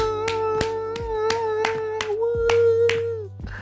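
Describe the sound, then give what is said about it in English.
Steady hand claps, about eight or nine sharp slaps in an even rhythm, over a held, wavering hum-like tone and a low background drone. “I wish I had a clapping machine now.”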